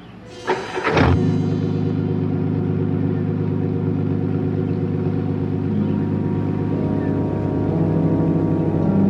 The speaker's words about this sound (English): Car started somehow. He got his car started. How come his car just up and started like that? All by itself. He wasn't anywhere near it. It just started all by itself.